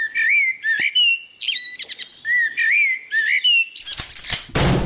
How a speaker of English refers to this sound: Gonna get that damn bird one week, I tell you.